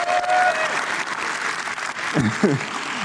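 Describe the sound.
A crowd applauds with dense, sustained clapping that holds steady for the whole stretch, a broad wash of hand claps with a few voices calling out underneath.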